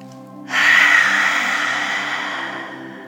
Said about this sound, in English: And last one, as loud and forceful as you can, lion's breath, deep breath in.